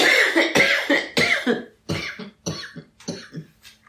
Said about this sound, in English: You can edit out that cough.